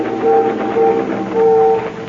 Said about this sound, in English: Ferry whistles. They're signaling us.